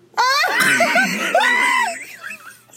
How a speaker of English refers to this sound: The fucking scream. Should I know? What is that, bro?